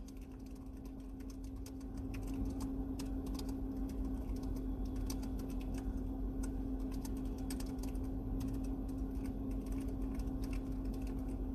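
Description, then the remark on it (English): Quiet, rapid keyboard typing, irregular clicking keystrokes over a steady low electrical hum, with no one speaking. “I'm typing, y'all.”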